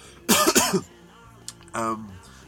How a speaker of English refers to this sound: but I'm going to cough.